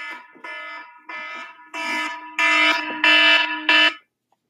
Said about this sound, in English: So sorry. That is just an alarm to tell me that my class is about to start, but I have it set. I have all my alarms set 10 minutes before my actual class starts because sometimes I do forget or sometimes I sleep in way too long and it wakes me up